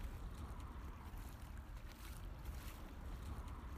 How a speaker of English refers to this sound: as you might be able to hear, I'm now walking in the river.